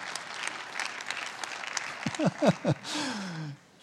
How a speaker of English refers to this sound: The keystone habit that will impact every other area of your life is engaging daily in God's word. I didn't think I'd get applause for that.